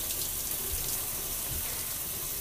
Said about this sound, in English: You see how long I'm taking a shower? I've been here for 6 minutes. That's how long I've been doing this thing for, 6 minutes.